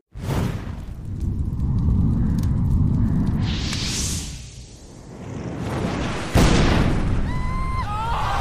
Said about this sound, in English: You all don't know this, but the intro music for when we jump into the game this week is the sound of fire and explosions and screaming, because that's what you all hear when you get out of the Arcanium.